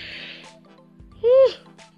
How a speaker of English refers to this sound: Oh my god, I keep yawning.